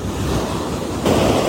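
Steady roar of ocean surf washing ashore, a broad hissing rush that swells louder near the end as another wave breaks, with some wind buffeting the microphone and no voices.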